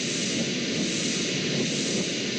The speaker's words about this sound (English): That's white noise and Bram's lullaby.